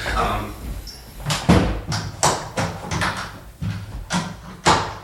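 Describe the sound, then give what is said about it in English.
Commotion as a cat is carried out: a rapid, irregular run of about ten loud thumps and bumps, like a door knocking and furniture being jostled, with faint murmured voices underneath. “Sounds of cat removal.”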